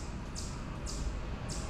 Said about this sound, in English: The squeaking... Oh, the birds, they have a, or maybe a squirrel. They have a definite metronome-like quality. It's coming from over there. You're hearing the echo against the chimney. The animals are in the wood.